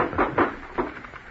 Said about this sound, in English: Well, right about now is when you open the elevator door.